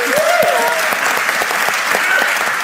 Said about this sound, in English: Everybody give her another round of applause.